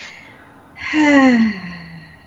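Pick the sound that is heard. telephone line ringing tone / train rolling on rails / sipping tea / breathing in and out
breathing in and out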